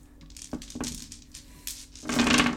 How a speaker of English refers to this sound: Get out my dice. Oops, that was a little loud. It's gonna get loud rolling them, so prepare for audio levels to be balanced.